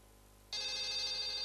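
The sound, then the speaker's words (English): A phone call cuts off: after a moment of near silence, a sudden steady electronic tone starts and holds loud and unbroken to the end, with no one speaking. “The phone has just got cut. I think it's having some problems.”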